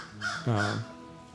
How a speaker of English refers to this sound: Even a crow cawing in the background, it finds it, it's hard to get you ticked off.